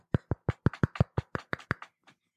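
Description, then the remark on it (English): A quick run of about a dozen hollow knocks on a desk, imitating someone knocking at a door, struck at a fairly steady pace, with the final knock noticeably softer. No voices. “Oh, hey, somebody's knocking on the door. Hear that? I hear it now. It's my Foley work.”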